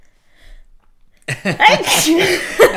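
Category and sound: human body sound, sneeze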